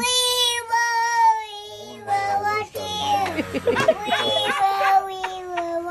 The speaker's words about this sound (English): Let's hear the sound of a selfish toddler trying to calm down her crying baby sister with a strange song choice.